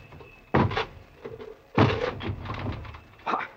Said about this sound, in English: Corporal! Break this door down!